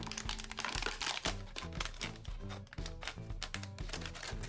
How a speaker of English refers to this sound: So I'm just gonna cut a water bottle in half. I'm gonna use the top half of the water bottle as my funnel.